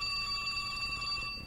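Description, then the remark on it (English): A telephone bell rings in one continuous metallic trill, bright and steady for about a second and a half, fairly loud with no voices. “Here's the phone. I know it's going to ring, and I want to be ready when it does.”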